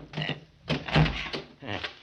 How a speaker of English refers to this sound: Can you get that door open? Oh, it's pretty well banged up. I think I can handle it.